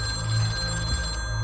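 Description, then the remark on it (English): A phone rings steadily with a bright, buzzing electronic tone that holds without pause for the whole moment, fairly loud, with no voices. “I only looked up when my phone wouldn't stop ringing.”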